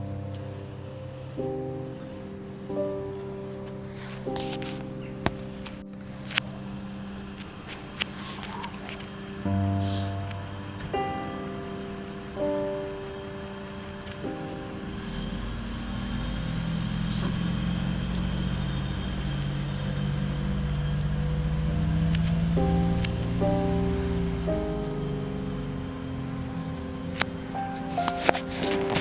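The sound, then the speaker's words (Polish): A garbage truck collecting bins of mixed waste: a droning engine with whining hydraulic tones, then a louder, steady rumbling churn, with a few sharp clanks scattered throughout. “Ten wrzucili, zmieszane. To by świadczyło o tym, że po inne pojemniki przyjedzie inny samochód.”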